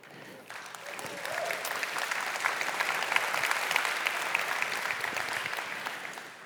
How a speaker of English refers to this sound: Don't clap for me.